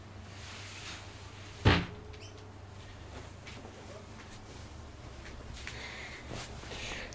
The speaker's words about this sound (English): Let me just open the door again because the light's falling out.